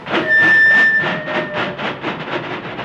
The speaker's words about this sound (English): My, my, my, my. Listen at that rhythm train, boy.